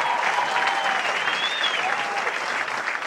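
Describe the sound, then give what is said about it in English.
A large golf gallery at the Masters applauds steadily and loudly after the winning final putt, the dense clapping mixed with cheers and a few rising whoops, sustained without a break for the whole few seconds. “He first hugged Fluff, his caddy, and then walked past the cheering crowd to find his parents.”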